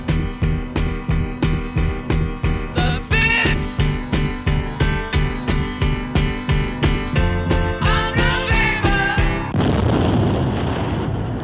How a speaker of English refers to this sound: It's a horrible ending. They remember the 5th of November, and then there's a fake gunpowder explosion at the end. It's just like... It's bad. It's bad.